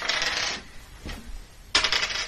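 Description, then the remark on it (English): Dice clatter and tumble across a hard tabletop in two bright, rattling bursts, with a softer knock in between, rolled as 2d8 plus 3 for a potion of cure moderate wounds in a tabletop role-playing game. No one speaks. “That was a bad roll.”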